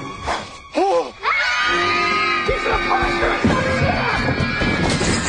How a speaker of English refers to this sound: All the kids start shrieking like they've been maimed.